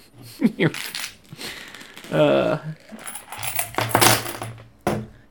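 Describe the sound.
Foreign coins rattle and clink inside a piggy bank in several jangling bursts, bright and metallic, with a brief burst of voices partway through.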